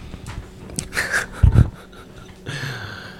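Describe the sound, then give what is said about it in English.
A dog snuffles and wheezes in a few short, irregular bursts, with a couple of thuds in the middle and a brief whiny groan near the end. “Damn dog.”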